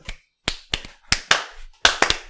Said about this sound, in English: That's a real church clap, listen, y'all.